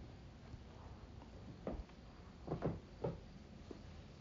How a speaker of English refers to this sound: The creaky floors of the lighthouse.